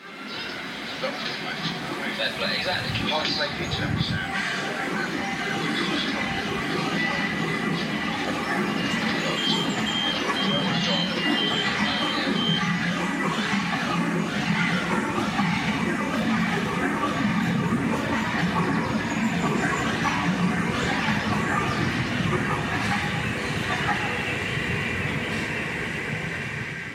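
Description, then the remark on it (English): A dense, continuous roar of a London Underground subway train, with rumbling wheels, metallic screeching and hissing air layered together at a steady loud level, with indistinct voices blurred into the din. “this piece called Tube, which was composed entirely from recordings on the London subway”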